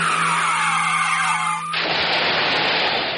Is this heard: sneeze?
no